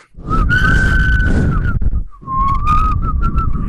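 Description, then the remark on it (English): Several audience members whistle together into microphones, a sustained wavering tone with a brief pause midway, over heavy low rumble and breathy noise, loud and slightly distorted. “Okay, audience, we're just all going to whistle into the mics.”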